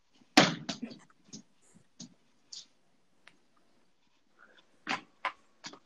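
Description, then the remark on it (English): A thrown ball slams hard against a door with a loud thud, followed by a few softer bouncing knocks, then a quiet pause and three more sharp thumps near the end. “I'm going to get in trouble, but I'm going to throw this at the door.”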